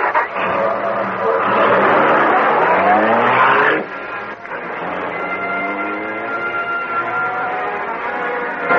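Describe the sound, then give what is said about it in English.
The engine of the Black Beauty car roars and revs hard, pitch climbing as it accelerates past a trolley car, then drops briefly before surging again at speed, loud throughout. “Cut past that trolley car. We're moving so fast it's weak, but we'll have a chance to know this is the Black Beauty.”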